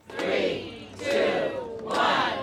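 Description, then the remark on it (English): A crowd gathered outdoors in a semicircle at a local store opening in Sonoma cheers and shouts together, the roar swelling in three quick waves over a couple of seconds, loud and sustained with no single voice standing out. “So when the time came, the crowd gathered outside again in a semicircle. The dignitaries gave their statements, and applause followed.”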